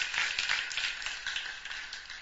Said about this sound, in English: Stand on your feet and clap for Jesus. Clap for Jesus. You're clapping for his word.